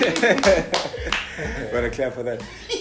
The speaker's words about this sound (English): I'm gonna clap for that.